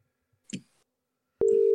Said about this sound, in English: All right, here we go. Got the dial tone working.